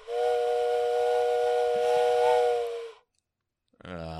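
A loud, sustained whistle blast with a breathy, hissing edge, like a steam train whistle, holding steady for about three seconds before cutting off; a voice begins right after.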